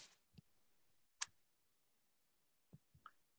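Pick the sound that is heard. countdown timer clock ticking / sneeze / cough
countdown timer clock ticking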